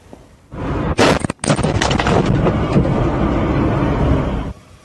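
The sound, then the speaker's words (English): A car crash in Texas: a drunk driver's vehicle roars in, then sideswipes a police patrol car stopped by the roadside with a sudden loud, harsh impact, followed by several seconds of heavy grinding, scraping noise before it cuts off. No one speaks. “That crash was a drunk driver sideswiping the patrol car, narrowly missing everyone.”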